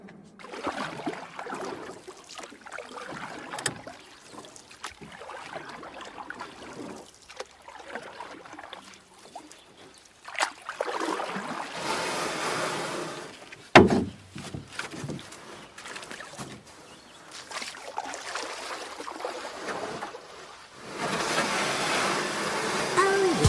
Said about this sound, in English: It is the time of year when this sound can be heard echoing up and down the riverbanks. Can you name it? That is the sound of a canoe trip. You may have also said water, or paddles, or boat being dragged onto a pebbly bank.